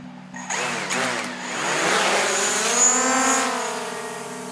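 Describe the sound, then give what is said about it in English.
A drone launched from the jungle by the water spins up abruptly into a loud, buzzing whine that wavers and climbs in pitch as it lifts away out over the Gulf, over a steady low hum. No voices. “We launch the drone out over the Gulf and then double back toward the port, making sure to keep a legal flight path.”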